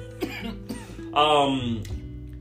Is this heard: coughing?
yes